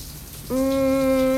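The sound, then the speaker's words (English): A steady rush of water running from a tap, joined halfway through by a loud, sustained humming tone, likely pipe resonance, that holds to the end. No one speaks. “Don't turn off that water.”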